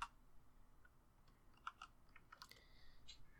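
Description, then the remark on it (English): Faint, scattered clicks of typing on a computer keyboard, irregular and soft, with a brief higher-pitched tone near the end and no one speaking. “Hold on, I'm just typing on Twitch again.”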